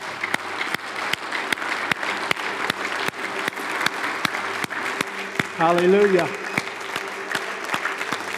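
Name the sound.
audience applauding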